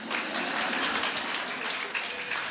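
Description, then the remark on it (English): A crowd applauds steadily, many hands clapping in a dense, even patter that holds at a fairly constant loudness throughout, with no single voice standing out. “You're clapping now.”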